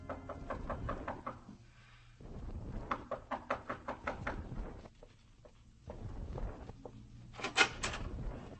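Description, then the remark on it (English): A police officer knocks sharply and repeatedly on the wooden door of a room in a tenement, in quick bursts of several raps each with short pauses between, loud over a low background rumble. “You bring yourself to the wrong door, senor police. Go skin your knuckles in another place.”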